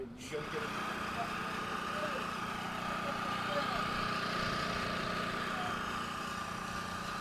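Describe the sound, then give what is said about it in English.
A small engine on a green rat extermination machine starts up and runs steadily at a constant, fairly loud drone with a lawnmower-like hum throughout, as it pumps chemicals underground into rat burrows. “So we've got this green contraption. It sort of looks like a lawnmower, I guess.”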